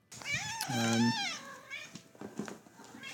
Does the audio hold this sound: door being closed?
no